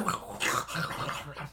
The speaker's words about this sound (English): There's wolves. There's wolves. They'll eat those teacups. There's wolves. The wolves love to eat the teacups.